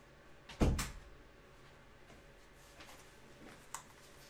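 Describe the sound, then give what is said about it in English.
A door shuts with a single solid thud near the start, followed by a faint click and quiet room tone; a smaller tap sounds a few seconds later. “I have to close the door for acoustics.”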